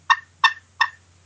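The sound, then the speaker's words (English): Three sharp, high-pitched gobbler clucks made on a turkey call, evenly spaced about a third of a second apart, close and clear with no talking. “But these gobblers, they'll do a, they cluck, but they do a high pitch.”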